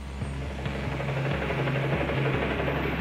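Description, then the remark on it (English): Steady, rapid thudding of helicopter rotor blades overhead as a helicopter hovers just above a prison roof around 3 in the afternoon, a loud continuous chop over a deep engine drone with a broad roar filling the upper range, no voices. “Around 3 in the afternoon, the beat of helicopter blades creates this cacophony inside the jail cells.”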